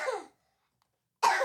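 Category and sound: human body sound, child coughing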